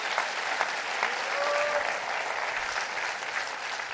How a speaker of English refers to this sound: Clap your hands real good all over the house.